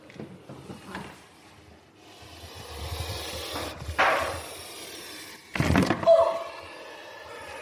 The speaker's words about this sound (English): The snake just bit the microphone. But you can see how very, very alarming that sound is.